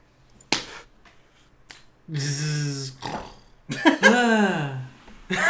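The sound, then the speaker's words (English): A single sharp slap of a hand on a bed, followed by a fainter tap, then two drawn-out, low, groaning vocal sounds without words. “Well, the first slap was me hitting the bed, and then, I don't know,”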